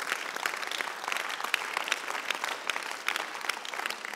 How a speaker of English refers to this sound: Hey, hey, stop clapping and get this one.